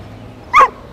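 A dog gives one short, sharp, loud bark, rising briefly out of a faint, steady background hum before everything settles back to quiet.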